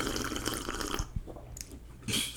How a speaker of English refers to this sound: Let me take a quick sipski. Little sipski.